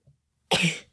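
A single sudden sneeze from a woman: a faint short intake of breath, a brief pause, then one loud, sharp, breathy burst that fades quickly. No one speaks.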